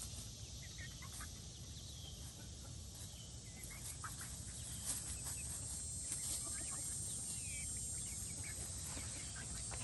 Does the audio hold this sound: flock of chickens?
yes